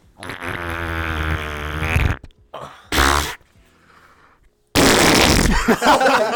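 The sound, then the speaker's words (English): Someone blows a loud, wet raspberry into a microphone, a long buzzing fart imitation, followed by shorter sputters and a final harsh, noisy burst after a brief pause. “Right now, do your best fart noise into the microphone.”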